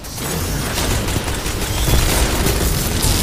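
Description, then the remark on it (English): A loud video game super-attack explosion, a thunder crash attack, roars for about three seconds: a deep booming rumble layered with harsh crackling noise that swells slightly toward the end, with no voices. “Oh, no, that thunder crash got me by only a hair.”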